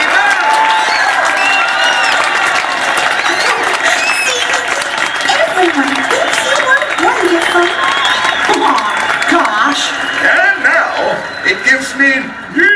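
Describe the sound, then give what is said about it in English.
A large crowd in Toontown applauds and cheers loudly and steadily for several seconds, with scattered whoops and shouting voices rising above the dense clapping. “A big round of applause for me.”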